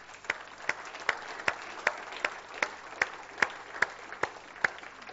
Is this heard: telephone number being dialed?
no